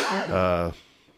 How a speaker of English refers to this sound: And I apologize. I keep, I've had this nagging cough since, and every now and then you'll hear me hack.